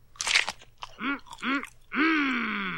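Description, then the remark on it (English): A crunchy bite of a Krusty Burger and brief chewing, followed by two short gagging groans and a long, drawn-out retching vocal sound as the burger is spat out. “Bah! I almost swallowed some of the juice.”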